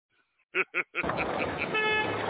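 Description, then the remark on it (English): Three short, loud car horn toots in quick succession, then a steady wash of busy traffic noise with engines rumbling and a sustained horn tone blending in. “We got traffic.”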